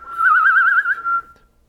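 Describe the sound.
A person whistles a short warbling, bird-like trill, a wavering tone that rises and falls rapidly for about a second before trailing off, fairly loud with no talking.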